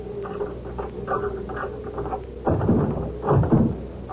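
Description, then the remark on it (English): A key scrapes and rattles in the lock of a house's front door, reached up four steps, with light metallic fiddling, then a louder clunk as the latch turns and the door is pushed open with a second heavier knock. “Now, open the door with your key.”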